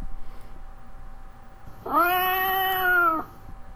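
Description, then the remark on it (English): A single drawn-out cat meow played by an Alexa smart speaker, loud, lasting over a second against a quiet background with a faint steady hum. “Alexa, open a box of cats.”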